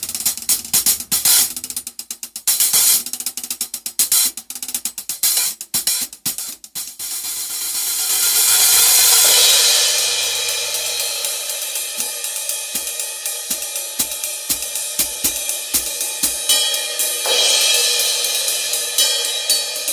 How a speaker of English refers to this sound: So in the video that will be linked, you'll hear the hi-hats, the B8 ride crash, and then the B20 stuff. So it's the hi-hats, the B8 ride, the splash, the crash, the B20 ride, and then the China.